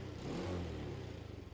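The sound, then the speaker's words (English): The engine of a little Honda mini scooter revs, its buzzing pitch climbing briefly and then settling into a steady, slightly sputtering idle. No voices are heard. “It was Summer's idea to pay cash for a little Honda mini scooter.”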